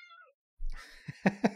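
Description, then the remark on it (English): A cat meows a short falling cry, then after a brief pause lets out a few quick, louder chirping mews in a row. “Top tier cat noises.”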